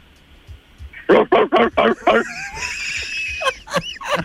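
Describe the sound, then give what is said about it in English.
A person imitates a dog barking for an interrupting-dog knock-knock joke, five quick, loud, rhythmic yelps, followed by some higher squeaky vocal sounds and faint background chatter. “Barking.”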